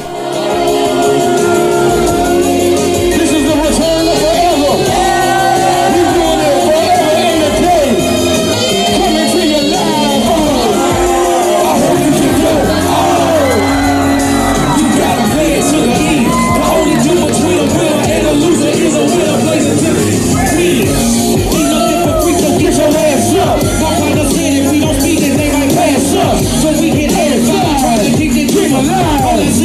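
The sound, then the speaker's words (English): A large crowd at a concert roars steadily during the final act, a dense wash of overlapping voices with scattered shouts and whoops rising above it, loud and continuous for about thirty seconds. “I wasn't really impressed with the crowd response. I mean, people were excited, but I expected it to erupt a little bit, and it was kind of quiet.”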